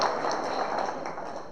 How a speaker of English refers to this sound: All right, well done. Give me some hand clap. All right, cool.